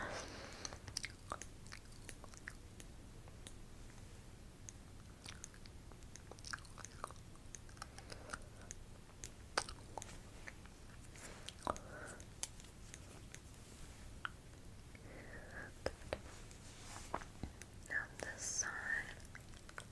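Nibbling on a spoolie brush: crisp little clicks and soft crunchy bites scattered irregularly over a hushed, breathy background, with a quicker cluster of sharper nips near the end.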